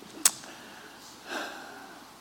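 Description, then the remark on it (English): A quick, sharp sniffle from a person battling mold and a sinus infection, followed about a second later by a longer, softer nasal inhale, with nothing else but quiet room tone. “So if you hear me sniffling, just please, my apology up front.”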